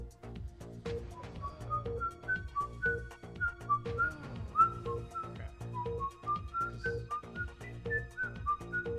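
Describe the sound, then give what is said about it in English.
A person whistles a melodic tune as a clue in a Stephen King film quiz, steady and clear, with sliding notes rising and falling over about nine seconds, accompanied by a low background rumble. “whistling, so I think it's a clue.”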